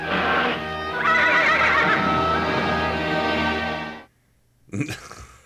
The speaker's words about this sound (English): I still right in the middle of that clip, you could hear Uni growl because, unicorns can detect evil.